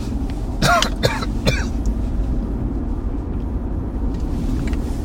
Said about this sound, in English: one second, let me take a break here, I'm coughing.